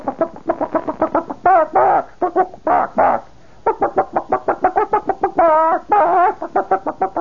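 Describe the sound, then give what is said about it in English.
A voice imitates an excited hen calling to a rooster she has seen in the hen yard. It fires off rapid runs of short clucks broken by a few longer, drawn-out squawks, the tempo quickening toward the end. “So here's where the chicken goes.”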